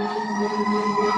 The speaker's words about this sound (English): those sirens are in Connecticut, not in the COE's living room or my living room